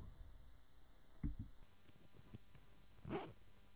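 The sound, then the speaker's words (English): A zipper is pulled in two short, scratchy strokes, a brief one early on and a slightly longer rasp near the end, fairly quiet against a soft background hiss. “It was a zip.”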